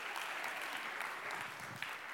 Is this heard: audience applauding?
yes